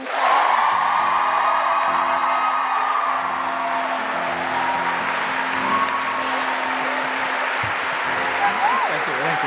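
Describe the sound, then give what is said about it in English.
A live audience claps and cheers steadily for several seconds as a vote on who won a 30-second recap, a dense wash of applause with scattered whoops and shouts rising over it, loud and sustained throughout. “Those of us who think that Casper won this 30-second recap, please clap now.”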